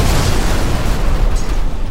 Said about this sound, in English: He starts just emptying the revolver into the engine of the truck. The truck explodes.